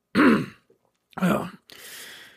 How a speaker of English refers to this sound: Let me clear my throat.